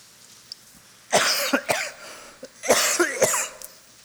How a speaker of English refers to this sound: I am doing my darndest to shake this cough, but if I cough a little bit during this morning, I just apologize in advance.